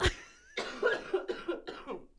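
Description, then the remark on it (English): A person with a cold coughs several times in quick succession, fairly loud, a sharp initial burst followed by a few rougher, wet coughs with brief gaps between them. “I love that you stopped coughing.”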